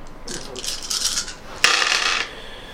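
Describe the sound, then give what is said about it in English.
Small hard objects rattle and scrape together in a brief shuffling burst, then tumble out in a sharp clatter that settles after about half a second, like dice being gathered and rolled. “All the dice.”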